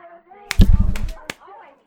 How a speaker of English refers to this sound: I like to slap myself whenever we do the drunken commentary. Usually I do it after the commentary is over, but I slap my face